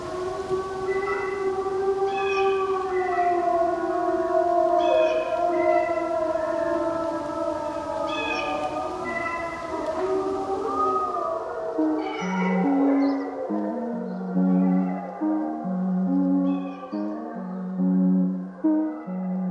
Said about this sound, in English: That's two packs of wolves converging on each other. I call it whisper howling. It's the sound they make right before they begin to howl. But watch what happens. It transforms here into the wolf sound. You'll hear a crow, and then... hear it shift?